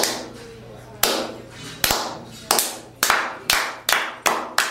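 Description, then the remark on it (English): A steady series of sharp hand claps imitating how PWG wrestling fans clap, about eight of them, each with a short reverberant tail, speeding up slightly toward the end. Fairly loud, with no talking. “Every time that we wrestle, they go out there and they clap. It's like this.”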